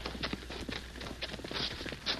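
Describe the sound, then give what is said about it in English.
Horse hooves clop in a steady, unhurried rhythm as a horse approaches, fairly soft, with no voices and only a low background hum. “Someone come? Yeah, hear a horse.”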